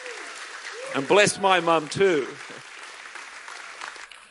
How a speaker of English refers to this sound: Give her a hand clap, a real one.